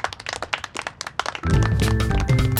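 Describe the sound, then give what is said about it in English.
A quick run of light, polite clapping, a golf clap, for about a second and a half before a steady musical bed with sustained tones cuts in and continues. “Golf clap for that, I think. Golf clap.”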